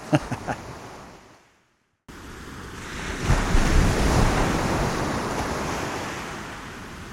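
Ocean waves crash onshore in a loud, continuous roar of surf with wind noise, after a few brief splashy bursts and a short moment of silence.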